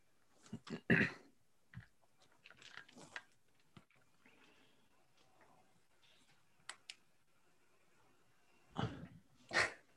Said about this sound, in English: Sorry, as I had like my multiple notes here and my dog like barking in the other room.